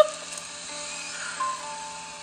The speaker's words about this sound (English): I'm just imagining a random dude standing there with a drill.